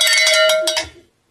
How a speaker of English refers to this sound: So let me ring the bell.